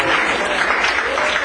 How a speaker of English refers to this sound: I appreciate that round of applause.